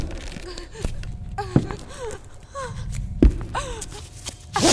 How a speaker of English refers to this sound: A man's feet thumping down a flight of rickety basement stairs.